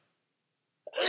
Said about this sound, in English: Bless you. That was going on for a long time.